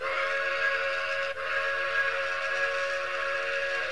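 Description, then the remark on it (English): A loud, sustained whistle from an approaching train blares continuously, its steady harmonic tones holding for several seconds with only a brief dip, piercing, with no voices present. “A train is coming, and boom!”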